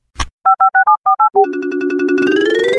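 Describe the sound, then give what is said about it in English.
A flip phone's tones while checking messages: a click, then seven quick, evenly spaced keypad beeps, followed by a steady buzzing tone that rises slightly in pitch near the end. No voices. “With that, let us go ahead and check the messages on the flip phone.”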